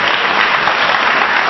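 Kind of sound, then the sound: crowd, audience clapping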